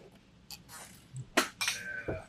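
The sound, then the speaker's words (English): Glasses clink together in a toast: a couple of bright, sharp taps in quick succession, the second leaving a short high ringing tone that fades out, over a faint low background. “Well, raise your glass first.”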